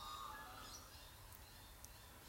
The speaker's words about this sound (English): And then I find myself moved around the world, enjoying the bird song here in Australia, sharing it with you.